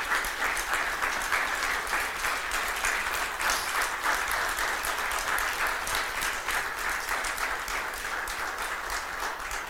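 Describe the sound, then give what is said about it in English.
Sustained crowd applause, a dense, steady wash of many hands clapping at an even loudness for the full stretch, with no talk over it. “You know they're applauding because we're getting rid of you, right?”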